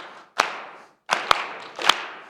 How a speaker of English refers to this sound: All right, we're going to clap together, so see if you can clap with me here. Like this.